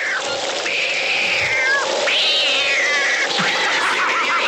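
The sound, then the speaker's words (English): A voice imitates a cat's yowling meow, two long, wavering wails rising and sagging in pitch, then a shorter one at the end, loud with no other talk. “That's the sound I was trying to do.”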